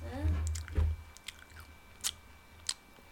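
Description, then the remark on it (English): Wet munching with soft crunchy bites at irregular intervals, a few sharper clicks standing out against a low rumble and a faint background hum. “You're munching.”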